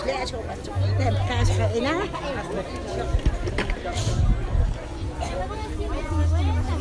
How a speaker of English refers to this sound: Every week, crowds gather as the town is taken over by market stalls selling everything from tourist souvenirs and textiles to electricals and fresh food and, at the time we were there, musical Christmas lights.